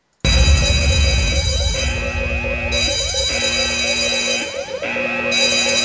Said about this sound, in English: For everyone else, we're going to now talk about the spoilers, but before we do that, here is the spoiler alarm so no one has any excuses for hearing spoilers they don't want.